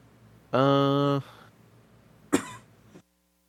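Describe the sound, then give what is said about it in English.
A short voiced, hum-like sound from someone, then a pause and a single sharp, loud cough, followed by silence. “Sorry, I coughed.”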